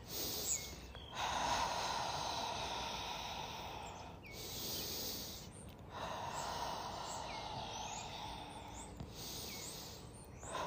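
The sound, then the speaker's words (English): Slow, deep breaths drawn in and let out by a person standing outside by a large maple tree, four long airy cycles in a steady rhythm, with faint birds chirping in the background. “I'm taking in some deep breaths.”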